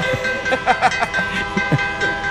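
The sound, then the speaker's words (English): A short train-style alert tone plays as a phone text message notification, with a steady sustained horn-like tone and a few chugging bursts layered over it, moderately loud. “Gotta stop that train. Right, that's my another. That's my text message.”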